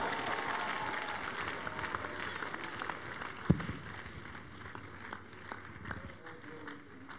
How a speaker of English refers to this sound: Give the Lord a big clap of praise. We made it. You made it to the month of July. Come on, give him the biggest clap of praise.